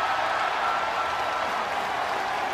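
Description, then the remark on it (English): A large Milwaukee crowd celebrating an NBA Finals championship roars and applauds continuously, a dense wash of cheering and clapping that stays steady and loud throughout, with no single voice standing out. “I know you can't speak for him, but what do you think he would want this crowd to know at this moment?”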